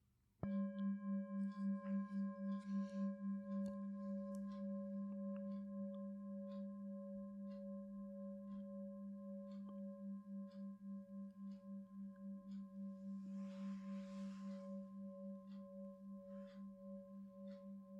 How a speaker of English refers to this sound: And the movement of the sound of the bell through time.